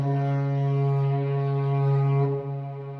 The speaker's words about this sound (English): All right. Here's a spoiler horn.